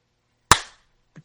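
A single sharp, loud hand clap with a short ringing tail, followed about half a second later by a much fainter, softer second clap. No one speaks.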